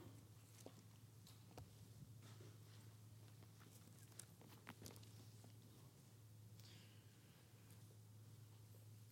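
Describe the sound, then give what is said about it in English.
Soft, irregular papery rustles and flicks of pages being turned as listeners look up Romans chapter 5 in the Bible, scattered over a steady low hum, fairly quiet with no talking. “I hear some pages flipping.”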